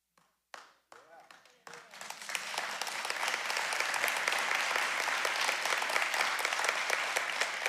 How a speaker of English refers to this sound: For those of you online, we pipe nitrous oxide into the room here, and people are loaded. I could read the phone book, and they'd applaud right now.